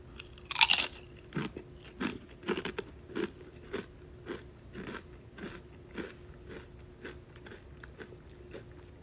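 A sharp, loud crunch as a spicy chip is bitten, followed by steady rhythmic chewing with crisp crackles repeating roughly twice a second. A faint low hum sits underneath, and no one speaks.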